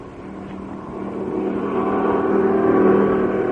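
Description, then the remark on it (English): A car engine hums steadily, growing slightly louder and deeper as the car pulls up and keeps idling, a continuous low rumble with no voices. “Pull up here. Stay in the car.”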